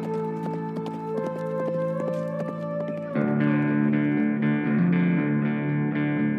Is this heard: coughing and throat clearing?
no